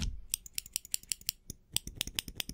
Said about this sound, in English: Since it's on your head, I'm gonna need to quickly shave the area around. Let me just take this scissors, my tiny little scissors, and just...